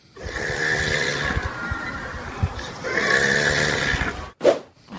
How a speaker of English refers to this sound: Now, yesterday on the show, these were the snores. Have a little listen.